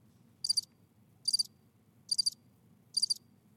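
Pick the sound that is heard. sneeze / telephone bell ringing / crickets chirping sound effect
crickets chirping sound effect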